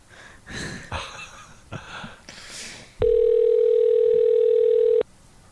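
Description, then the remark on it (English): Soft breathy rustling, then a single loud, steady electronic ring tone on an outgoing phone call holds for about two seconds before cutting off abruptly. “Get your ass on this phone.”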